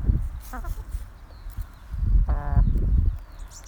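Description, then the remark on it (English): Hens cluck, a short burst of clucks early on and a longer, louder run of clucking later, over low rustling and scuffing sounds from the ground. “I'll leave you with the sounds of the hens.”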